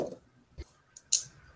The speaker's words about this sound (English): He just rolls dice. I don't like it. All the dice rolling.